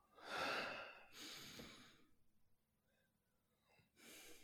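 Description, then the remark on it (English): A slow, deep breath drawn in and let out, followed by a quieter pause and then another long, airy exhale. “And with that, breathing life in, let's take a breath.”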